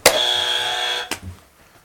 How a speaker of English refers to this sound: This is a buzzer, so you want to be quick with this one.